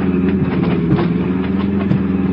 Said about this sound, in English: Brace yourself. I'm going to turn off the road now.